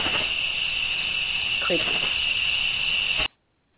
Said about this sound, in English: So, we now have crickets this evening.